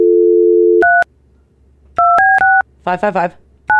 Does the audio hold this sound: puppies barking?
no